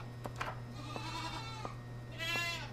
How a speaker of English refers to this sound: Not much, sir. Just seems to be a bunch of goats standing in pools of blood.